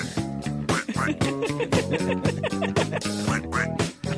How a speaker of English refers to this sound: Is that like electronic duck? Quack, quack.